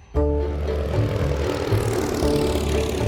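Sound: propeller airplane flying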